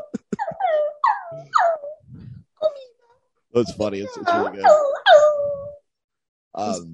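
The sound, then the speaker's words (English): A person imitates a dog whimpering: a series of high, falling, whiny cries in two short bursts, fairly loud, with brief speech in between and afterward. “because she does dog stuff all the way through. She like whimpers for sex.”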